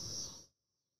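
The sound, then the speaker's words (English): A cicada's high, steady buzz, heard coming through headphones, drones loudly for about half a second, then drops off sharply to a thin, faint whine that lingers to the end. “Do you hear that cicada?”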